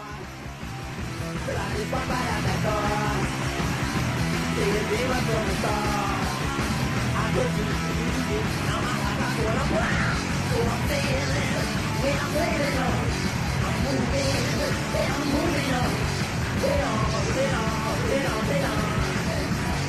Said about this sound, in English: Let's hear our next song snippet.